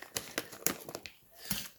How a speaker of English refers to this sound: There's a lot of crinkling going on right now. I can't get the zipper. Give it to me. This is some Aldi shit, dude.